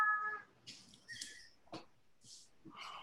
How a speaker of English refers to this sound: Everybody's cats are just having a field day on this call today. Mine are asleep. Mine just screamed. Mine just screamed. Fortunately, I was muted, so we don't have to listen to him yet.